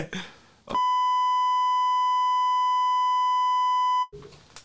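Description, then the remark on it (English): A single long, steady electronic beep from a pressed button holds one pure tone for about three seconds, loud and constant, with voices talking just before and after it. “Press that button? That beep? Well, supposedly that. Press that beep.”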